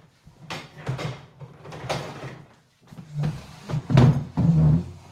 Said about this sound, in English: Your chair, dude. Get rid of your creaky chair.